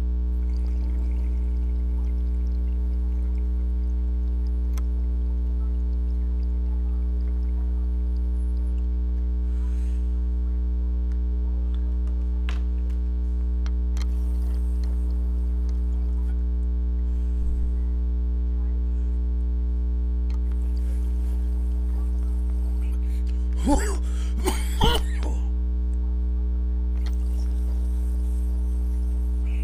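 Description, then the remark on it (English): A steady electrical hum runs throughout, broken near the end by a short burst of gurgling, bubbling water as a dab of Puffweiser propane-extracted sauce is taken through a water rig, moderately loud. “Looks like we're cooled down. I'm going in.”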